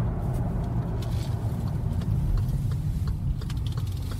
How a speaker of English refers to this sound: So we're just going past an exit on the motorway for a place called Thornton